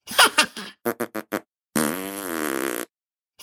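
A string of flatulence sounds: a short sputtering burst, then four quick evenly spaced pops, followed by a long, loud, buzzing fart that wavers in pitch for about a second.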